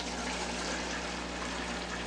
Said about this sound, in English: We're going to take the water, pour some water in there.